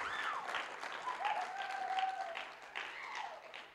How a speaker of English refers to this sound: Come on, give her a hand.